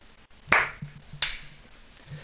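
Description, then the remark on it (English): A sharp, loud hand clap used to sync recordings when starting a new file rings out, followed about half a second later by a second, slightly softer clap, with only a faint low hum between them and no voices. “And I'll go off my clap.”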